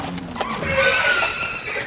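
Horses gallop out of a barn, past an office, toward a pen outside; one lets out a loud, drawn-out whinny that rises and wavers for about a second, with faint hoof clatter and a busy rustle of movement underneath. No one speaks.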